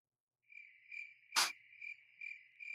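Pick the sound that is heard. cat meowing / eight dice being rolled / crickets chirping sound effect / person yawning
crickets chirping sound effect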